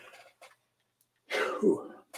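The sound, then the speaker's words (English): A single loud, explosive sneeze bursts out after a moment of quiet, preceded by a couple of faint breathy sounds and trailing off into a rough, throaty tail. “and I apologize, I'm going to sneeze in a second.”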